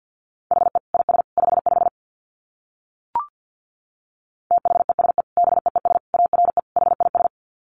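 Rapid Morse code at about 50 words per minute: a steady mid-pitched tone keyed into quick dits and dahs, in two bursts separated by a pause with a single short click between them.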